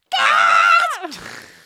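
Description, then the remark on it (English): A single loud, high-pitched comedic scream held steady for most of a second, then sliding downward and breaking off into a strained, comical trailing wail, with no other sounds. “You got to go high up, like you have smaller balls than me.”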